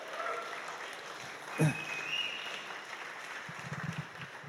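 A crowd applauds and cheers steadily, with a sharp whoop rising out of the noise partway through and a brief high whistle soon after, then the clapping carries on.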